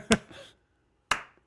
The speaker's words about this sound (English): I only have the clapping track.